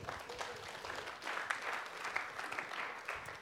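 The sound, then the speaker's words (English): An audience applauds steadily for a few seconds as a woman is invited up on stage, a dense wash of many hands clapping at once with fairly even loudness and no voices over it. “So let's give her a clap.”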